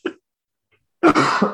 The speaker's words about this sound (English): and then, do excuse me, I'm so sorry. I've got a bad cough.